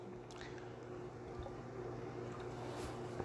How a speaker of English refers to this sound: Let me get a swig of water. This is a cigar and commercial free podcast. But I will gulp some water occasionally.